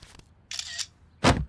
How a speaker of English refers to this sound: And Dewey takes a picture of it and starts to upload it to whatever the Duckverse equivalent of Instagram is with the caption, Launchpad looks sick, but trust me, he's stoked.